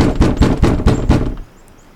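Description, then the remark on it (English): A quick series of about five firm knocks on a cabin door by a man standing on the porch, evenly spaced, followed by a short stretch of near silence. “He knocked on the door once more.”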